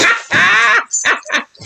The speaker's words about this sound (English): I'm sorry. My dog is trying to get in my room.